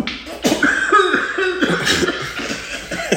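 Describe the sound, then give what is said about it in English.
A run of harsh, hacking coughs from someone smoking weed and laughing, several rough bursts in quick succession with strained, raspy breaths between them, fairly loud throughout. “I just discovered why … dies when he coughs”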